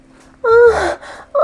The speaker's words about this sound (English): I gasp in surprise. You have struck my bare pussy with that ribbon whip.